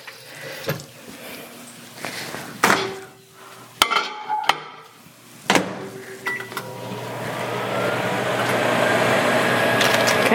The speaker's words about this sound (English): All right. Let's microwave this bad boy.